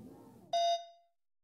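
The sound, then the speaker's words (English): A throw line telephone in the main bar area gives a single sharp electronic ring, bright and tonal, cutting in abruptly after a low murmur of background noise and then fading out quickly into silence. “Seconds after Gerald ends his live feed, the throw line phone starts to ring again.”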